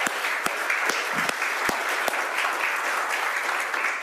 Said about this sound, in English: So we can give him a round of applause.